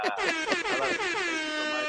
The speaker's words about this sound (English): and hey, hit the DJ air horn.